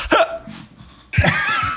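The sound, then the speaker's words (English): A couple of sharp hiccups from a man who has just chewed and eaten a hot pepper, each a quick vocal jolt, followed by a burst of breathy, noisy sound that could be a gasp or cough. “All right, And cue the hiccups.”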